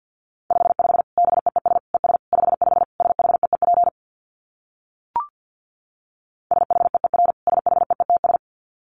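Rapid Morse code at about 50 words per minute: a steady, mid-high beeping tone keyed in quick dits, sounding in two bursts separated by a pause with a single faint click.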